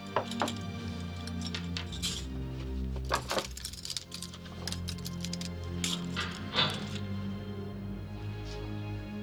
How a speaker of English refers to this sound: He finds it, takes it out, and begins to unload the silverware into his knapsack.